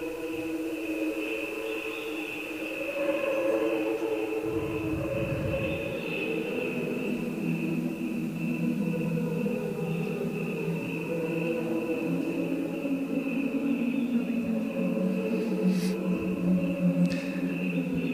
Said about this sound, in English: So they slowed that sound down, and here's what it actually sounds like when crickets make that noise.